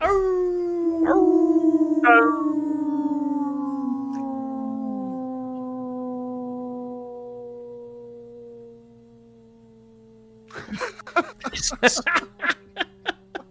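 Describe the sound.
A single long dog howl, fairly loud, holds a steady pitch and slowly sinks and fades over about ten seconds. Brief choppy voices follow right after it.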